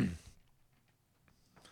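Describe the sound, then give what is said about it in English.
A single short, sharp cough bursts out at the very start, then fades into near silence with only faint rustling afterward. “I wish I had a cough button.”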